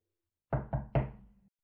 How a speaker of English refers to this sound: She looked around the house, but she did not see the wolf. So she went and knocked on the door.